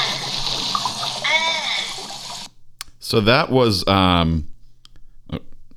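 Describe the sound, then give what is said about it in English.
Water gushes hard and steadily from a hose for a couple of seconds, with squeaky, cartoonish gulping noises over it as a young Sonic the Hedgehog is inflated by the water hose, taking the water in. It cuts off abruptly, and then a loud, expressive voice follows. “Yeah, he's being sexually inflated by a water hose.”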